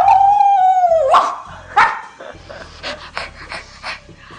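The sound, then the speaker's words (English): A voice imitates a dog yelping in pain, voicing the dog character Shibarai being hit by an attack in a tabletop roleplaying game: a long, high whine that dips and rises, then several shorter, sharp yelps and whimpers, loud. “Shibarai yelps out in pain.”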